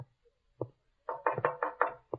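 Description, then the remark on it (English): A man knocks firmly on the front door of a house, starting with a single rap and then a quick run of several sharp knocks in an uneven rhythm, clear with no voices. “Answer the door, Freddy, while I get rid of this apron.”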